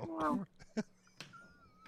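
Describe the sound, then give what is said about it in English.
A person imitates a cat's meow: one short, wavering, nasal cry that rises and falls, followed by a brief thump and a faint, thin high tone over quiet background. “Did he meow?”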